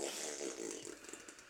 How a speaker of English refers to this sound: Fart jokes never not funny.